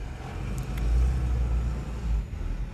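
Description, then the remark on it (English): A truck rumbles outdoors, a deep, steady low-frequency drone that swells slightly and holds throughout the few seconds, with no one speaking over it. “It's a truck.”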